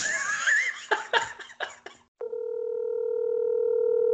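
A horse whinnies briefly, then a steady electronic phone tone sounds continuously for about two seconds, growing slightly louder, as a phone call is placed to the owner of MKE Fit.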